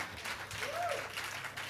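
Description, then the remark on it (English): An audience applauds steadily, a dense wash of many hands clapping at even loudness throughout, with a faint voice rising briefly underneath. “Oh, those of you who are clapping, thank you.”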